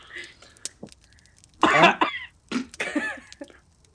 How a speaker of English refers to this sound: If she starts coughing, then it is.